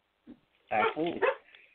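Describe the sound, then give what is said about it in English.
A service dog barks in a quick cluster of loud yips and barks, preceded by a short soft whine, with brief pauses between the bursts. “I'm sorry, I have my service dog.”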